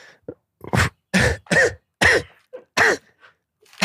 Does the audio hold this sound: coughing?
yes